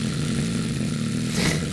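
A Scattergories game timer runs with a steady, low mechanical whirring rattle, buzzing evenly throughout with a brief brighter hiss near the end. No one speaks.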